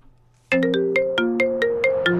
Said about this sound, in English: Normal ringtone! No. I'm going to keep going. You just played a ringtone. Yeah. You didn't let it play out. You got to let it play out a little bit.